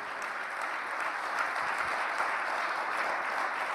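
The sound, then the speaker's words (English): An audience claps steadily, giving Jesus a big round of applause: a dense wash of many hands beating at once with no pauses, holding an even, moderately loud level throughout. “Please give Jesus a big round of applause.”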